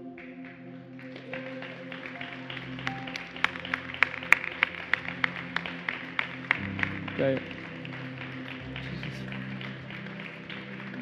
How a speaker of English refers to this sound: You should be standing on your feet right now, clapping for these people.